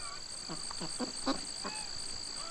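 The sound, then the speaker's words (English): A run of about six harsh, clipped duck quacks in quick succession over a constant high-pitched insect drone of crickets and bees in an organic farm field, with no talking. “His fields are buzzing with noises. Crickets, bees, chickens, ducks.”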